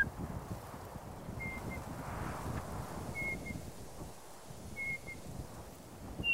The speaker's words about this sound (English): And then there's a two-note whistle, which is like a...